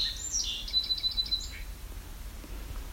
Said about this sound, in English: Different call for a song sparrow. Slightly different.